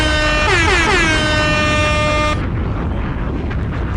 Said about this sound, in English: But the first part? Can I get an air horn on that?